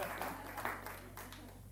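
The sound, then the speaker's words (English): An audience applauds during a sermon with a steady wash of many hands clapping, fairly soft, lasting a couple of seconds with no voices over it. “You can clap for that.”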